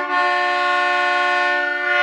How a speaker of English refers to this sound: And we have a modern day car horn, which is actually a 1939 Cadillac dual horn.